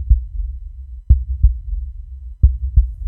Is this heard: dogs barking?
no